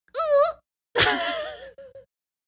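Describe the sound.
A person vocally imitates snoring: a short nasal, whiny drawn-in sound, a pause, then a longer raspy, rattling exhale trailing into a few faint sputters. Fairly loud.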